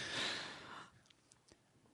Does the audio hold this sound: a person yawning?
yes